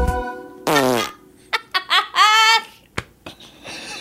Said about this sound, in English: Did you make that fart noise or did you have a fart noise? No, I paid a stock library. Put a fart noise in it.